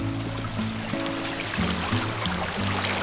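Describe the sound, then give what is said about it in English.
Steady rushing water pours and splashes continuously as waterfalls cascade down the cliffs of Fern Canyon in Humboldt County, with low sustained musical tones playing underneath throughout. “With these waterfalls cascading down the cliffs.”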